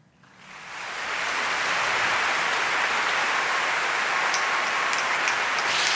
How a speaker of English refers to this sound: Yes, you can hear the crowd is going crazy.